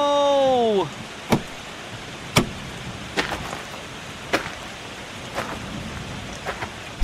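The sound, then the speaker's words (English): Steady rain hisses throughout, with sharp, scattered drips and taps landing every second or so, after a brief falling tonal whine at the start. “I wish it never rained again.”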